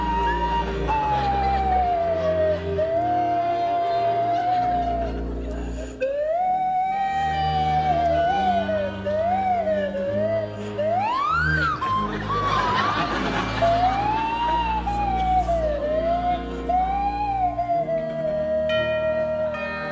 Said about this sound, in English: That is some slide whistle. I mean, that is a professional whistle he has there, though. Professional slide whistle.